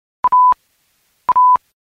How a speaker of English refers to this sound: To play the first three messages, I'll first press the back button, leftmost on the second row, until I hear a series of double beeps, which indicates that I've reached my first message.